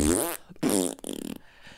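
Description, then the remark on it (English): Three loud fart blasts in quick succession, each buzzy and sputtering with a wavering pitch, the last one rattling out in a choppy flutter before trailing off. “A brick set me free, just like a fart set you free.”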